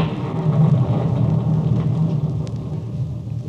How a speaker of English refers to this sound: Know them now as the thunder sings its hymn to Hades, and the lightning lashes at the soul of man.